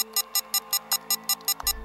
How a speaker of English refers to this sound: What happened? Master alarm, Commander.